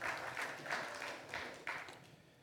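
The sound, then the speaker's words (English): A church audience applauds a woman who filled in at the service, a dense wash of many hands clapping with a few louder swells running through it, sustained for a couple of seconds with no voices over it. “Yeah, you can clap again for her.”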